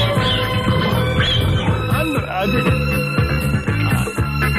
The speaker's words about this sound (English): Sounds like an owl or something. I mean, maybe an owl or like a... maybe a hawk or... They don't have hawks here, do they?